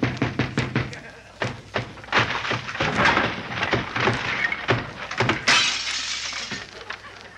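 A wooden door is broken down: repeated heavy thuds and sharp cracks give way to a burst of splintering and clattering debris, loud, with no talking.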